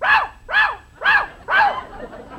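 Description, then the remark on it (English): A parrot named Polly barks like a dog four times in a steady rhythm, each loud, sharp, mid-pitched bark clearly separated by a brief pause, with no talking over it. “Jack, what have you been feeding this bird?”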